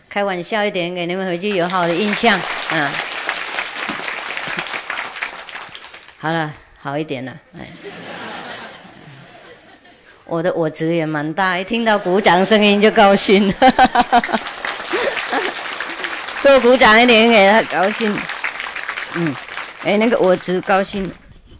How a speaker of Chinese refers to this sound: 一听到鼓掌声音就高兴，<笑>多鼓掌一点给他高兴